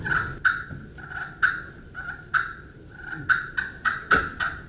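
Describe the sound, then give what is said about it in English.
Rolling, fluttering turkey purrs played on a friction call, broken by sharp popping cuts at an uneven rhythm. About a dozen pops stand out over a steady mid-pitched trill, with no talking. “This is a friction light, sir. This is a surround. And on cuts and purrs, where you curve, if you want a real kind of pop on a purr, it's real dead on it.”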